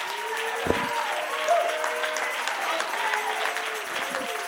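A crowd claps steadily throughout, a dense, continuous patter of many hands, with sustained tones humming underneath and a couple of brief low thumps.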